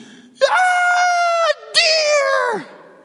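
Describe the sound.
A person vocally imitates the shrill, piercing scream of excitement a four-year-old girl would let out, in two loud, sustained bursts, the second sliding downward in pitch at its end, with no other sounds.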